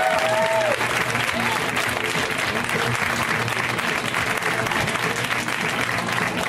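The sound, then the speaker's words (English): Loud, sustained audience applause at a comedy show welcoming comedian Rhea Butcher, a dense steady roar of clapping with crowd noise mixed in and a brief whistle near the start. “Give it up for Rhea.”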